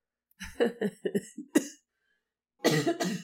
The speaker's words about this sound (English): See, now you got me coughing.